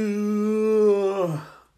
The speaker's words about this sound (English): I hate my fucking yawns.